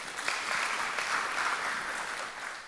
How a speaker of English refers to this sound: All right, give God a praise clap today.